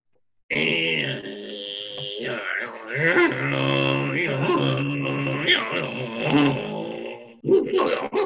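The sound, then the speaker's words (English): A voice imitates a dial-up modem connecting to the internet over a phone line: roughly eight seconds of loud, wordless warbling, buzzing drones and screechy high tones that keep shifting in pitch, with a short break near the end. “That's a dial-up modem for you kids.”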